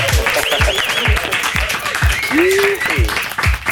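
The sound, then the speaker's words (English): A studio crowd cheers and applauds loudly and steadily for a guest on the phone, with rising and falling whoops and shouts over dense clapping and a regular low thumping underneath. “Make some noise.”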